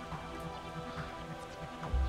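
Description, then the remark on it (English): Steady rain falls in a continuous, even hiss, with soft patter over a low, sustained background tone and no voices. “Or on the ground, looking up into the rain.”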